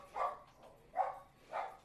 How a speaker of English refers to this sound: barking at something. I don't know what.